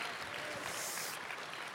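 crowd, audience applauding

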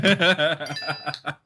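signal or alarm, phone notification ding

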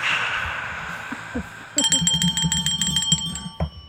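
sound effect, bell ringing sound effect

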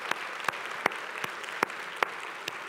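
crowd, audience cheering and applauding

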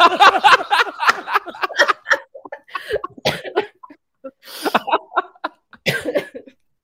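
human body sound, coughing

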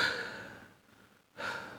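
human body sound, heavy breathing

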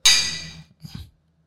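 household object, glasses clinking

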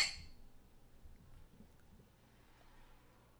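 household object, glasses clinking

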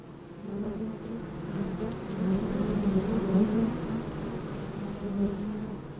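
insect, honeybees buzzing

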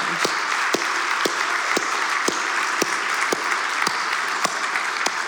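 crowd, round of applause

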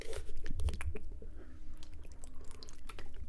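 human body sound, swigging water

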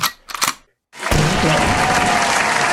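crowd, hand claps

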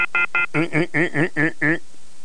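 signal or alarm, phone line tones

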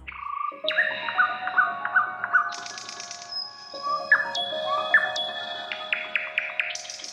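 bird, nightingale singing

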